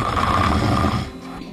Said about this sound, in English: Who else has the machine with the button that says snore on it in front of them?